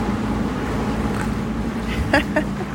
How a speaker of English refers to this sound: I hope you can still hear me amongst all the boats. It's all happening.